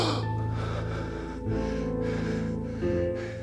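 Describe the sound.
A preacher imitates a loud, drawn-out gasp for air, a raspy breath pulled in sharply, with steady held tones droning underneath throughout.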